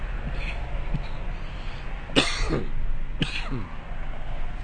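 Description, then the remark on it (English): Two harsh coughs about a second apart from a person taking a hit while stuck in traffic, loud and abrupt against a steady low rumble of background noise, with no talking. “I'll just cough in your ears for the rest of the fucking episode.”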